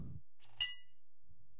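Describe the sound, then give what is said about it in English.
A single bright glass clink from glasses touched together in a toast rings out with a short shimmering tail, preceded by some soft rustling and followed by faint low murmuring. “Hey, that was a fairly decent clink for us this time.”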